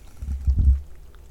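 Low gulping sounds of someone drinking water, a few muffled swallows in quick succession with soft wet liquid movement, no talking.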